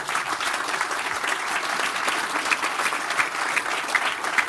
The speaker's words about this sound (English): So how about a round of applause for our panelists?